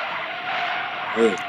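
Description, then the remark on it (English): An old-school Mustang 5.0 car skids with a loud, sustained hiss of tires scraping and squealing across pavement for over a second, with a brief low voice-like murmur near the end. “Every motherfucker wants a Mustang 5.0 old school one.”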